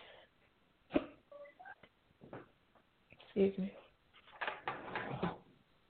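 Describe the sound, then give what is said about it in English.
Two abrupt, sharp hiccups about two seconds apart, with soft breathy vocal sounds and murmuring in between. “I had the hiccups now, but that's just what it is.”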